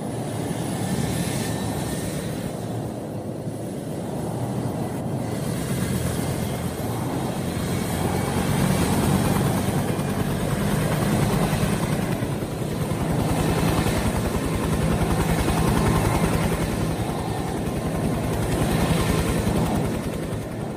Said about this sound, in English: You decide to try and start the helicopter back up again.